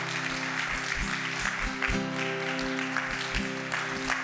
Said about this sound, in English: If you could just give him a round of applause for delivering the Word of God.